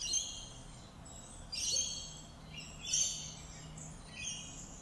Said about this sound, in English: Listen to the birds. Do you feel that energy?